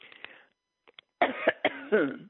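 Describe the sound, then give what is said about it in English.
Harsh, hacking coughs: a short rough cough, a brief pause, then a loud raspy run of several strained, throaty coughs in quick succession. “And I'm thinking, geez, I mean, all my listeners do is listen to me hack cough.”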